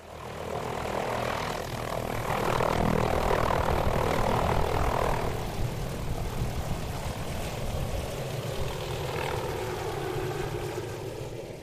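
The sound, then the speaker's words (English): A helicopter flies in to Lake Graney, at the western end of the Haast Range, its engine and rotor making a loud, steady droning roar that swells slightly early on and then holds constant, with no voices. “The big question hanging over us was whether the helicopter could make it in 2 days in a row.”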